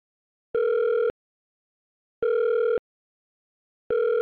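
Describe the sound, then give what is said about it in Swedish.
A telephone ringback tone while calling an epidemiologist at the Swedish Public Health Agency (Folkhälsomyndigheten), repeating three times, each steady burst lasting about half a second with long silent gaps between, clear with no voices. “det här är Aftonbladet Daily som ringer upp”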